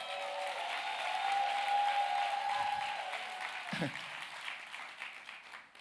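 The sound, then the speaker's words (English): A church crowd applauds the choir steadily for several seconds, a dense wash of clapping with scattered cheers and a brief whistle, tapering off slightly toward the end. “Can y'all clap it up for the?”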